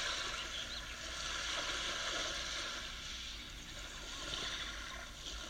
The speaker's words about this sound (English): You hear the waves and the seagulls, birds.